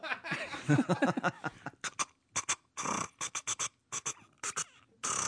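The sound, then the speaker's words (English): A voice imitates the loud keyboard typing of a man checking his email: a brief voiced, squeaky noise, then a string of sharp, irregular percussive bursts, like hurried keystrokes clattering in quick clusters. “Well, it's a loud keyboard.”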